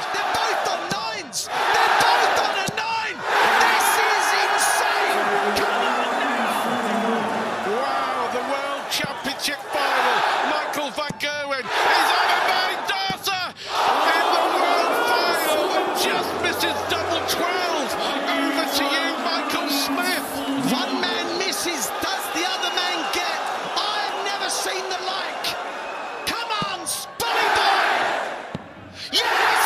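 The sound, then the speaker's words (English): A large crowd at the World Darts Championship final roars and cheers continuously during the final leg, with surging shouts, chants and bursts of excitement swelling loudly, while a voice speaks beneath the din. “Michael Smith produced a phenomenal final leg to win the World Championship final against Michael van Gerwen. Have a listen to it.”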